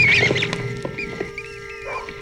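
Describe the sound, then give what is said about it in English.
A swarm of bats gives off shrill, wavering squeaks and chirps, loudest at the start, over a dense, steady flutter that fades a little, with a few sharp clicks scattered throughout. “Duck down! Everybody duck! Bats! Bats!”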